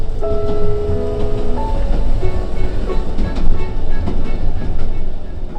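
The Polar Express train gives a sudden lurch and starts moving, rolling steadily along the rails with a dense mechanical rumble, faint metallic squeals and irregular clicks, continuous throughout with no talking.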